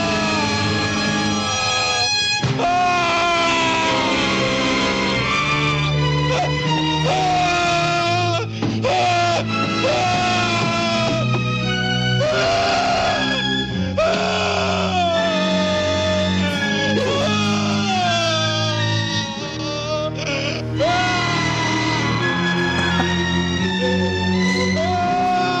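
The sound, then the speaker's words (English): A man's long, agonized scream from a horror film wails on and on, loud, its pitch sliding up and down in anguished moans with barely a pause for breath. “So this like clocks in at like a full minute, including a comedy cut where he's going from the scream to him on the stretcher.”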